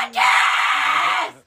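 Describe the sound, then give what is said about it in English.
A single loud, sustained scream bursts out, holding steady for over a second before cutting off, with a faint voice murmuring underneath. “Oh my God, I've heard that screamed so many times this weekend”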